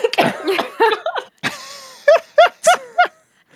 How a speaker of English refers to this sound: so sorry. I'm going to cough right now. Let me mute myself. I just swallowed my water wand.